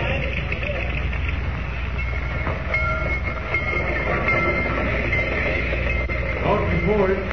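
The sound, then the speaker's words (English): A dirty train rumbles steadily along the rails as it arrives at Rocky Point, a dense, continuous low roar with faint metallic clatter running through it from start to finish, loud as if heard from aboard. “I've never been on such a dirty train.”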